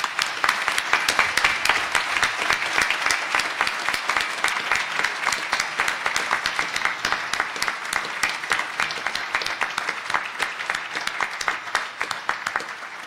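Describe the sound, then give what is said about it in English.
Sustained audience applause, a dense, steady patter of many hands clapping for about thirteen seconds, loud and even throughout with a slight fade at the end. “Michael, I think, deserves a special applause, and if you'd join with me”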